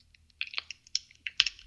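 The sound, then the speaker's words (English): Crisp, irregular crackling of a Clif Bar energy bar wrapper: a quick cluster of sharp, papery pops and rustles, fairly bright and moderately loud, with no talking. “There's a bunch of crackling noise on that other side.”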